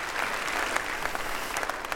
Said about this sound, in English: And thankful as well for our buildings and grounds crew that have made this campus of ours outside of the construction zone behind us into a beautiful, beautiful place. So give them a round of applause too, would you?